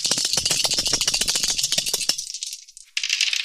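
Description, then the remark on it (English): Dice rattle rapidly in a cup or hand before a roll in a tabletop game, about two seconds of dense bright clicks, then a brief pause before another burst of clattering. “I nearly forgot my dice, too. Thankfully, they're close at hand.”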